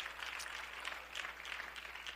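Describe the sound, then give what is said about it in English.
A church audience at a morning service claps steadily to thank the Lord, a dense, continuous patter of many hands at moderate volume with no voices over it. “Somebody ought to clap their hands and thank the Lord for it this morning.”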